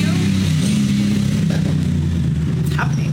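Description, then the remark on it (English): A motorcycle engine drones loudly and steadily, its low rumbling tone holding throughout as it rides past, with faint background noise above it. “Driving past my motorbikes when I'm live streaming, outrageous.”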